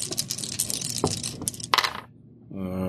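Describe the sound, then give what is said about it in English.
Dice clatter and tumble across a table for about two seconds, a busy rattle of sharp clicks and knocks that stops abruptly, landing on two fives, followed shortly by a steady low humming tone. “Two fives.”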